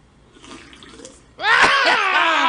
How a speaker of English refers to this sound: there was just something nasty about that slurp. I think I'd rather watch him in a porn video than watch him take another sip of that.